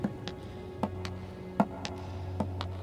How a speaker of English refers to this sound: Then I heard a noise, a sharp clacking noise, like someone was wearing wooden shoes.